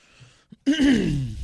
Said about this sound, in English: Your dad's been coughing a lot.